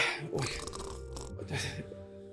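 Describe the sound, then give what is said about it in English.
A person imitates snoring with their voice while pretending to be asleep in bed under the covers, making two rough, gurgling inhaled snorts about a second apart, fairly loud, with a low hum continuing underneath. “I put the covers over me and I'm like, I start snoring.”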